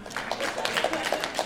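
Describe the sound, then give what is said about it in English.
A crowd of liberals cheers and claps in a steady, busy wash of noise when asked who would prefer a Mike Pence presidency to a Trump presidency, with scattered voices calling out over the applause for the whole short stretch. “I just wanted to get a room of lefties to cheer Mike Pence, but there you go.”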